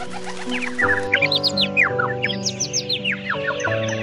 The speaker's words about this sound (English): The small chirpy birds, which come to the windowsill every morning, find Neha still sleeping.